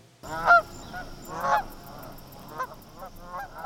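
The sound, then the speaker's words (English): Geese honk repeatedly during their fall migration, flying low overhead, in an irregular series, the nasal calls overlapping and fading in and out over a steady outdoor hiss, with a couple of louder honks standing out. “I love the sound the geese make as they migrate in the fall. They're honking, their wings flapping low overhead.”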